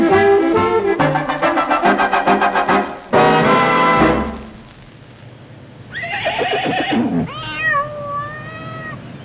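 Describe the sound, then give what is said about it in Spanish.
A loud, fluttering cartoon horse whinny bursts out, then a rising burst and squealing, meow-like animal cries follow as cartoon critters squabble, with no talking. “Los animalitos continúan discutiendo. ¡Oh, no! El caballo ha escupido una pata de gallo.”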